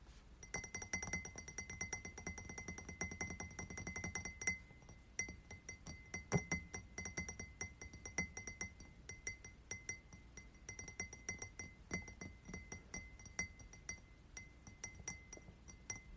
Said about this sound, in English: I'm going to start by tapping on a glass.